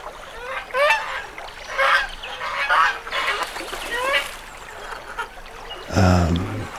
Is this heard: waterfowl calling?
yes